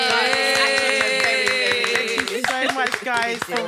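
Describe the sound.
Steady, rhythmic hand clapping, close and fairly loud, continuing for a few seconds while voices cheer and talk over it.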